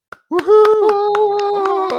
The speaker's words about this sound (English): Yeah, boo. You're going to hear boos and claps, right?